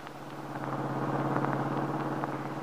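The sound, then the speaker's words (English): A car drives along steadily on the way to an appointment with an attorney, its engine giving a continuous low hum with a faint road rush over it, at an even, moderate level without any talking. “Now, in another car, Max is driving Paul Cromwell to an appointment with his attorney.”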